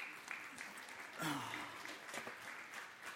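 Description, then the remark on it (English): A crowd applauds a grandmother's 105th birthday in a dense, steady patter of many hands clapping, with a brief swell of cheering voices partway through before the clapping continues at a moderate level. “Shoot, that's all it takes to get a clap.”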